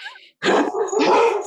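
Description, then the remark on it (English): Dogs bark in a loud, overlapping flurry, preceded by a brief high whine, then several rapid yaps run together for over a second with no one speaking. “The investors are the dogs in the background.”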